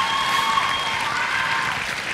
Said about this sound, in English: Okay, come on, let's give a great clap.